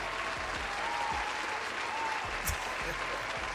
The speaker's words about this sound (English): One more round yes, of applause.